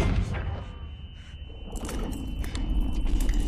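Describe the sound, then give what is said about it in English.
A rapid series of sharp, crunchy hits, made by a Foley artist snapping celery as the sound of kicks and punches, lands over a heavy low rumble, the impacts growing thicker and louder in the second half. “The old celery breaking. If you're a Foley artist, you're breaking the celery.”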